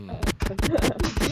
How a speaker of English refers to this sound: Hey Mike, go ahead and cue up the gunshots, Mike.